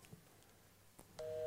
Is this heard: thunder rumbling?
no